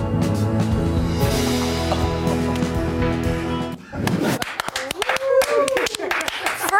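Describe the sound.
A steady, sustained musical chord plays for a few seconds, then cuts off and gives way to a burst of audience clapping, a rapid irregular patter of many hands, with voices mixed in.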